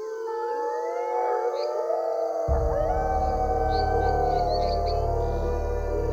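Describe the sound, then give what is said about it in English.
A dense chorus of overlapping howls from many creatures in the surrounding forest, many long wavering cries rising and falling in pitch at once, loud and continuous, with a deep low rumble joining in partway through. “A cacophony of howling burst forth from the surrounding forest.”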